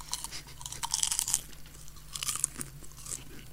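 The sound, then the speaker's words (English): Crisp crunching of popcorn being chewed, a run of irregular bursts with a few louder bites, and no talking. “See, crisps have a different type of crunch, so I do not think that that is a crisp. And I can kind of smell it, so I think it's popcorn.”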